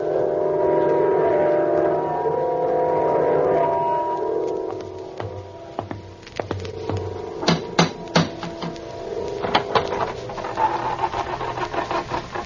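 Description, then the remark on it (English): A door in an old house creaks open by itself with a long, drawn-out groan, then a series of sharp wooden clunks and rattles follows, including a couple of loud bangs as it slams shut by itself. “Door's open all by itself.”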